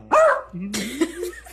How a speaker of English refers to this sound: Okay, so there's this blind dog says she may be blind, but at least she's not mute. She's in the corner beside the fridge. Just barking.